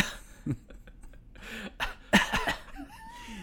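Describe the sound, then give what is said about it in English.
A few muffled, breathy coughs into a napkin in quick succession, moderately loud, with a throaty rasp between them and no talking. “He's going to cough into a napkin and there's going to be blood on it.”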